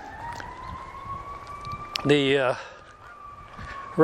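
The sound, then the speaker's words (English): A fire truck siren wails faintly in the background, a long, steady tone that slowly rises in pitch, while a voice briefly speaks over it. “I hear a fire truck off there somewhere.”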